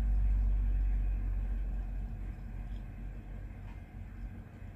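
A computer cooling fan spinning up whirs with a steady, rumbling whoosh heavy in the low end, loud at first and easing slightly over the few seconds. No one speaks.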